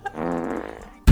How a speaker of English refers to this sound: Oh, that's why they call it a rosebud when you like think you're farting, but you poop your pants a little.